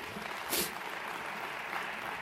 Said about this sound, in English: So by round of applause, how many were impacted by the sessions today?